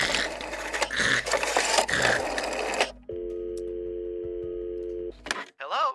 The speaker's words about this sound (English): Picks up the phone.